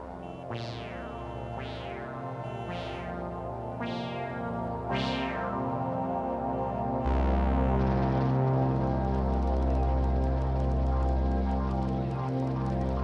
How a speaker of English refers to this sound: The synthesizer is making a burbling sound underneath. That's created using a process called sample and hold.